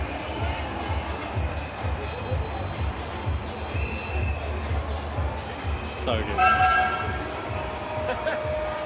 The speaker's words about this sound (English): Actual steam train at Pride. Nice.